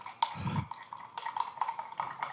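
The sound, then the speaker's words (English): A spoon clinks and scrapes repeatedly against the inside of a glass while mixing a powder, producing bright ringing taps in an uneven stirring rhythm, with a brief low thump early on. “Here comes some stirring sounds with a spoon and a glass.”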